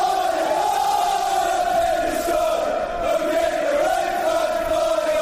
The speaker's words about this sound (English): Now, of course, you get football chants like this, which are fairly generic, which are sung by clubs up and down the country. And we've certainly got loads of those.